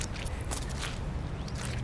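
Squelching footsteps in soggy boots, about four wet, squishy steps trudging at an uneven pace over a constant low rumble.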